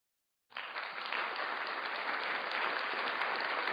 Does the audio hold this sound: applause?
yes